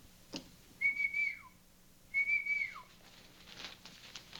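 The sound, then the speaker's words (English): Two clear, sustained whistles at a steady high pitch, each ending in a quick downward slide, separated by a short pause, with no talking and a faint background hum. “What was that? Oh, it's what? I didn't hear any whistle.”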